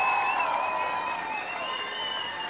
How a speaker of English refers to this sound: Thank you so much. Give you a round of applause.